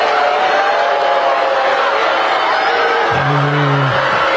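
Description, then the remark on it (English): A large crowd reacts to the introduction of the First Lady of the United States, Melania, at an event about opioids, roaring steadily and loudly with scattered cheers and whoops mixed with mostly disapproving boos, while a low, sustained boo-like tone stands out near the end. “Now, there's some cheering going on. But the vast majority is negative there.”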